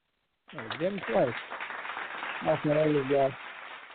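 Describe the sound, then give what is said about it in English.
A recorded applause sound effect played by a show host for a caller's book: a steady wash of crowd applause starts abruptly and carries on throughout, with a couple of short bursts of voices calling out or cheering over the clapping. “I'm gonna throw some claps on it for you.”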